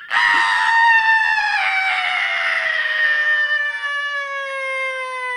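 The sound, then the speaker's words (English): A woman's single long, ear-splitting scream, let out away from the microphone, held for several seconds with a shrill, piercing tone that slowly sinks in pitch. It is loud and sustained, heard alone without any talking. “She lets out one final ear-splitting scream away from the microphone.”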